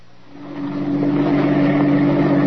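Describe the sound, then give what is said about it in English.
A car engine hums steadily and swells louder as the car drives up to park by a harbor dock at night in heavy mist, a low droning motor sound with no voices over it. “I guess I'd better park here and we can walk across the street.”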